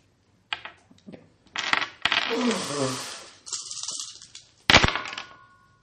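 Dice rattle and clatter across a hard surface in a few quick bursts, fairly loud, ending with a sharp final tumble that settles into stillness.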